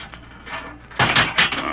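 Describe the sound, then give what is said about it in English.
A jail door being unlocked with a large key and opened: soft rattling of a lock, then a sudden loud clatter and heavy creaking clanks as the door swings, with no voices. “That door's good.”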